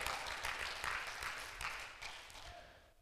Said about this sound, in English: No, come on, clap your hands.